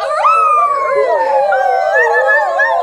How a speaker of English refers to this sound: It seems like wolves out tonight. Mm-hmm. Yep. On October 15th of every year, the wolves and the coyotes and the ultra-intelligent mountain lions get real riled up.